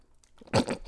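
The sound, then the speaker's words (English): Someone takes a quick drink of water: a short, wet gulp and swallow, a few soft mouth noises, and a faint click at the end, with no talking. “You had to take a drink of water over that?”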